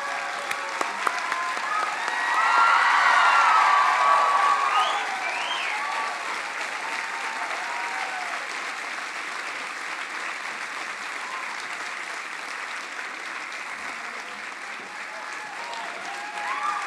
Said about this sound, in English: Can you please give them a round of applause?